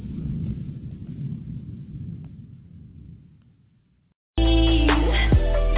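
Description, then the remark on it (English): A deep rolling rumble of thunder from a storm bringing record rains swells and slowly fades away over about four seconds, followed by a brief silence before loud music cuts in abruptly. “Now, later tonight, and in the morning, before we see this storm pull out.”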